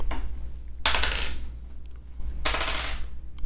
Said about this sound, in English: I want you to give me a roll of one of your dice and give me the number on it.